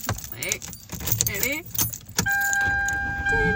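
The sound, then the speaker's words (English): Keys jangle over a voice, then a car engine turns over and settles into a steady running hum, with a dashboard chime ringing on continuously. “I'm turning on my car. So, if y'all hear some background shit, it's my car.”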